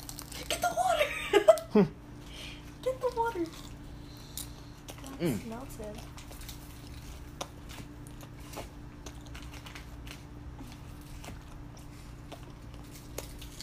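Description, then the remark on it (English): A first bite of food is taken: soft, irregular clicky chewing noises continue for several seconds, with a few short hummed vocal sounds early on before the quiet mouth sounds carry on alone. “ASMR chewing sounds.”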